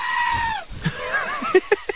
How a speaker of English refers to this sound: Or spoken about the goats that sound like they are screaming like humans.